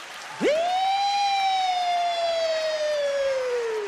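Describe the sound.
A person vocally imitates a police siren: one loud wail that swoops up sharply, then slowly sinks over a few seconds, with no talking around it.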